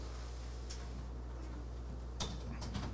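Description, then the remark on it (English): A studio door being unlocked and opened: a couple of soft isolated clicks, then a quick cluster of latch and handle rattles, all fairly quiet over a low steady hum with no one talking. “The door to the studio is now open.”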